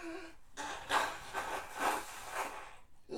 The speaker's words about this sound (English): Blow my nose. Hold on. Blow it. 1, 2, 3.